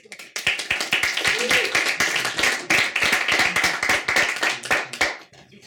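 An audience breaks into applause for a visiting professor of Roman and late antiquity archaeology at Charles University in Prague before his talk, many hands clapping in a dense, steady patter that holds at an even level for about five seconds before tapering off.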